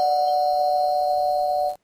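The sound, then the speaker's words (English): A doorbell, signalling a pizza arriving, sounds as one loud, steady electronic tone held for almost two seconds before cutting off abruptly, with no voices. “Yeah, there's a doorbell, which means pizza from the dead here”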